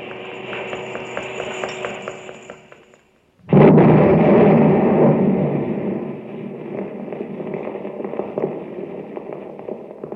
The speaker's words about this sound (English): There it goes. Three whole buildings blown to bits.